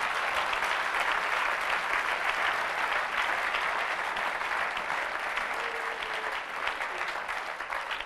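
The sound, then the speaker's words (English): A church audience claps steadily together during a sermon, a dense, sustained wash of many hands with no pauses, holding an even loudness for several seconds. “You have to clap well because you have never preached before.”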